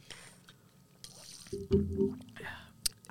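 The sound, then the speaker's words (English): Close-up drinking sounds: wet mouth clicks and a few swallowing gulps of water right at the microphone, with soft breaths and squishy liquid noises between them. “So we had our little water break”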